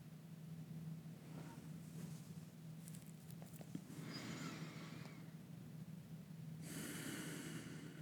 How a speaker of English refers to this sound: And then return to normal, just in and out through your nose, breathing.